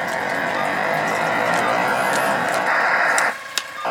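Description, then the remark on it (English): A loud, raspy, fart-like video game sound effect buzzes steadily for about three seconds, then cuts off abruptly, followed by a single sharp click. “That was the game farting, not me.”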